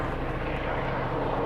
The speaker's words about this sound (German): ist das ein Hubschrauber? Ich vermute mal, es ist ein Hubschrauber. Beim Flugzeug müssen sie sich irgendwie schneller bewegen.